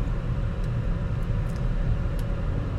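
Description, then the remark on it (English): Steady, loud road noise from a car moving at highway speed in two-lane traffic on Interstate 64, a constant low rumble and tire roar filling the whole stretch with a few faint high squeaks on top. “I think I'm on I-64.”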